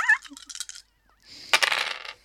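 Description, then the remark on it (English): Three dice rattle and clatter, a short rolling burst followed by a sharp hit and a longer skittering tumble across a hard surface that settles to stillness. No one speaks. “Roll me three dice.”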